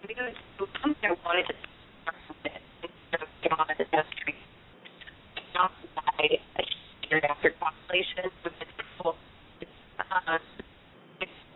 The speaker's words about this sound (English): I think your cell phone is cutting in and out. We're having a "can you hear me now" moment.